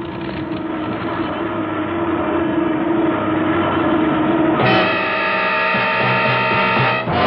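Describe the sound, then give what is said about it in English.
A loud, steady roar from an airplane with its starboard engine on fire drones throughout as the pilot takes the plane down, with a strained, rising whine cutting in partway through as the engine labors. No voices. “it's just the starboard engine. I'll have to feather the prop.”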